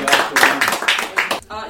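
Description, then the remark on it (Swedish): A burst of audience applause for a performer about to sing a Christmas song, dense clapping that swells and dips for under two seconds, with a voice briefly coming through as it fades at the end. “Stor applåd”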